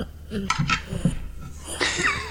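A dog named Matilda, held up to a microphone, makes a few short, low grunts and snuffling huffs in quick succession, followed by a longer, wavering, higher-pitched vocal sound. No one speaks.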